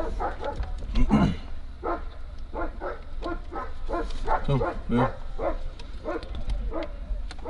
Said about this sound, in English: So, I don't think they like the sound of those dogs. Don't know what's going on.